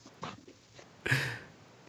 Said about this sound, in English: You hear my crazy dog? Come here.